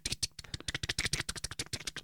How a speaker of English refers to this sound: Wonderful mechanical keyboard.